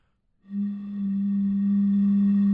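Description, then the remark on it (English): A voice imitates a boat whistle with one long, steady, low-pitched tone that starts abruptly after a brief silence and holds evenly loud to the end, with no talking. “Well, I'm trying to do like a boat whistle.”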